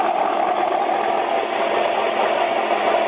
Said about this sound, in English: And if you're just joining us, this is our second trophy truck off the line. Cameron Steele with that clean air in that top qualifying position.